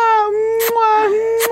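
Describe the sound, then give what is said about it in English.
A puppy named Snow White whimpers in one long, steady, high-pitched whine that dips slightly in pitch, broken by a few short breathy sniffs, fairly loud and with no talking over it. “Snow White is one of the world's most famous puppies.”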